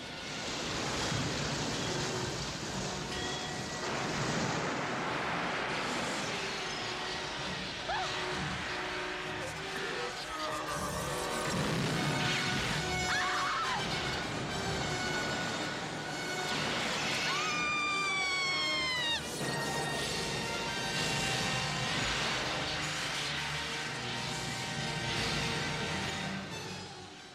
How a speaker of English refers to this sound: And first the water tank tips over, splash, the stunt guys are fighting away, and the letters start dropping. That's a guy cutting the wire so the letter would drop.